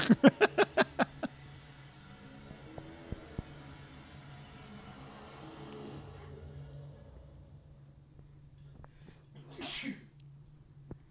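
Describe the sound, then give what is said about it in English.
A sharp sneeze bursts out over a low steady hum, with a few brief clicks and soft rustling noises scattered through otherwise quiet surroundings. “Ghosts make me sneeze.”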